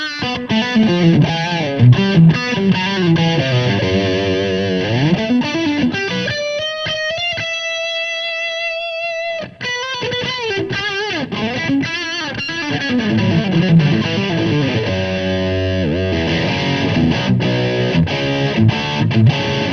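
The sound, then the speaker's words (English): A distorted electric guitar plays loud, gritty riffs and lead lines through a small Marshall tube combo amp, with a sustained bent note ringing out midway before the crunchy playing resumes. No voices. “Which Small Marshall Tube Combo is the Best?”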